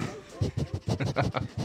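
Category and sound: animal, dog barking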